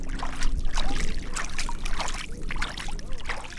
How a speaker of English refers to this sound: wades in knee-deep to plant tule. The reeds used to grow abundantly here and gave Tulare Lake its name.